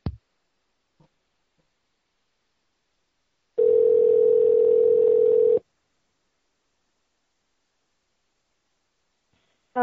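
A steady, mid-pitched phone dial tone hums loudly for about two seconds as a call is placed to order carryout food, then cuts off abruptly, with only a few faint clicks and near-silence around it and no voices.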